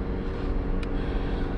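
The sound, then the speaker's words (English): A car engine, driven on the way to a gas station, roars with a steady, deep low rumble, holding an even loudness throughout. There is no talking, just one brief faint click partway through. “I like this car a little bit better than my new car, and because it's the engine roar and revving, and it's a little better.”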